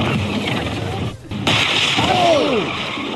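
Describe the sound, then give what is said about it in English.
A rented Tesla scraping in a collision: loud, harsh grinding and crunching noise, a brief dip, then renewed scraping with curving high-pitched metallic squeals. “The car scraping.”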